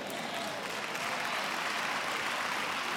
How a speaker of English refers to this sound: Thank you for that hand clapping. I can even hear the people out in the overflow. They're clapping more than you here in the mini tutorial.